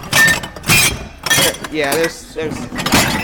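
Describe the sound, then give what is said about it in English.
Broken glass pieces clink and rattle in several bright bursts, with a brief murmur of voice in between. “Look at all this glass. I was about to say I'm so surprised none of it's broken, but it's broken.”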